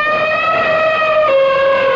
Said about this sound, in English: Alexa, open animal sounds. Okay, here's animal sounds. Ahoy there. What animal sound would you like to hear? Elephant. Get ready for an elephant sound.